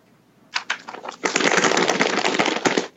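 Paper rustles and crinkles in a few quick bursts, then becomes a loud, continuous shaking with sharp crackling snaps throughout, without any voices.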